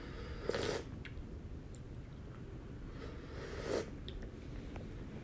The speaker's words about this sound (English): Well, let me have a sip of my coffee here.